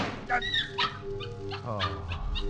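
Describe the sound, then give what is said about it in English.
A dog whimpers and lets out a few high, short yips in a room in the middle of the night, whiny pitched cries rising and falling over about two seconds, moderately loud. “Yes, it's only a dog.”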